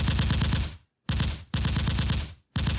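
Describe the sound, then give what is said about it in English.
A rapid machine gun fire sound effect in four loud bursts, each a fast rattle of sharp shots, broken by brief silences; the last burst cuts off abruptly. No one speaks. “Hey, say you're going to do rapid fire again. I'm going to do rapid fire.”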